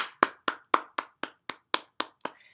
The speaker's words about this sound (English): I mean, can we clap for consistency?